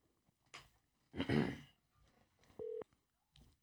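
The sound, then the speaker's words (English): A phone call being placed rings out as a single short, steady electronic tone, following a few brief bursts of rustling noise, before the call is answered. “I'm gonna make this call real quick, man.”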